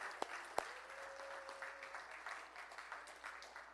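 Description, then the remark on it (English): A crowd applauds the students, a dense patter of many hands clapping, with a couple of sharper claps standing out at the start and a faint sustained tone briefly underneath. “If you guys would just give our students a round of applause, and just, they did an amazing job.”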